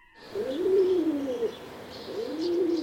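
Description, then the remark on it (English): Pigeons cooing in a backyard, two soft, rolling low-pitched coo phrases one after another over a faint steady background, with no voices. “I was in the backyard with the pigeons.”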